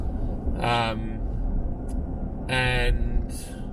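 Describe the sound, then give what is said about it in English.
A steady low rumble of road noise fills the inside of a moving car as the driver drives and talks, constant, broken by two short bursts of a voice. “So I thought I'd just revert back to kind of how it all started, which was me just driving and talking through what's on my mind.”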